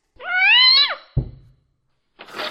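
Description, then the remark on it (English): A single drawn-out cat yowl, loud, wavering in pitch before dropping off, followed by a dull thump and a short burst of rustling noise. “The sheer fabric of your gown won't stand up to even a kitten's claws.”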